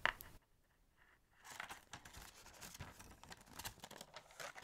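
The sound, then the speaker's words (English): Tissue paper wrapping jewellery in a gift box rustles and crinkles as the box is opened, a soft continuous crackling that starts after a brief click and a quiet pause, with no talking. “And when you open the box, they package the jewellery in a beautiful tissue paper.”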